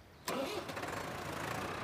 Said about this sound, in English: The three blue tractors pulled away.